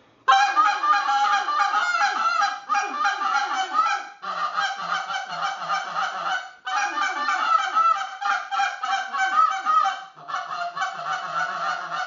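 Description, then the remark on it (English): A goose call blown in a frantic, nonstop crazy-calling style: rapid honks and clucks stacked tightly together in loud bursts with only brief breaks, high and reedy over a low, gravelly grunt. “That's what I call crazy calling.”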